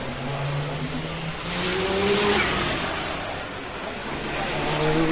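An Audi R18 e-tron quattro race car drives past with a steady, whirring engine whine over a broad roar. The sound swells midway, then eases slightly, staying fairly loud throughout with no talking.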